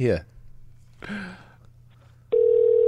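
A few short vocal sounds, then a loud, steady electronic telephone tone switches on and holds, like a line connecting or ringing after a call is dialed.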